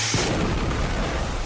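A grenade explosion sound effect: Night Night's night grenade explodes in the barrel of the Freezer's freeze ray gun, a sudden loud blast followed by a dense, rumbling roar of noise that stays heavy and sustained through the rest of the moment, with no voices.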